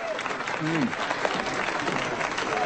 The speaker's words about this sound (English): Here they are, applauding.